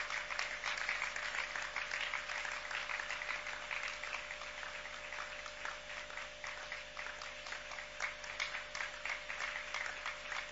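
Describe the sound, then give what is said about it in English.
A church crowd applauds steadily for about ten seconds to encourage a family to come forward, many hands clapping in a dense, even patter at a consistent moderate loudness, with no voices standing out. “And let's, with a clap, encourage them to come over.”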